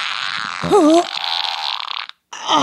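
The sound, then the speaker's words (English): A voice imitates a fart with a long, breathy, sputtering raspberry, briefly bending into a squeaky wavering whine, then cutting off before another burst starts. “You're like the Robert De Niro of fart acting.”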